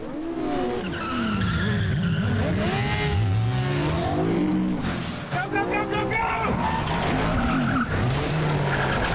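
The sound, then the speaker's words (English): A car drifts with screeching tires and a revving engine whose pitch sweeps up and down, loud and continuous for the whole stretch, with a few sharp bangs mixed in, filmed in tiny narrow streets. “Banging, drifting.”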